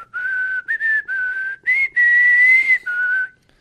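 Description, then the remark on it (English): Someone whistles a short, clear tune, a handful of sustained notes in quick phrases with brief gaps between them, ending on a held note. No one talks. “That's his whistle thing, right?”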